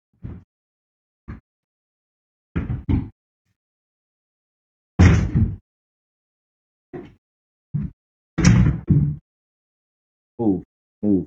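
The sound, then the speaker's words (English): A chair is shoved and knocked against a door to barricade it, in a series of loud thuds and scraping bangs, irregular bursts separated by brief silences, with no talking. “She's trying to barricade the door on, with so a chair.”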